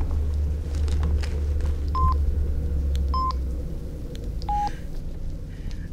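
Three short electronic keypad tones sound a second or so apart as a phone number is dialled to call a neighbour, each a clear beep standing out over a steady low rumble.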